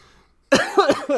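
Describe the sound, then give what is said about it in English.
A short fit of harsh, sputtering coughs from someone who swallowed their spit wrong, about three rapid bursts in a row after a moment of quiet. “I swallowed my spit wrong.”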